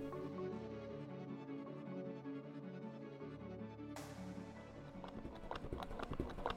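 A mechanical galloping rhythm from an artificial heart pump that replaced a man's removed heart, with quick repeated thumps over a steady low hum. The beats grow sharper and louder in the last few seconds, with no voices.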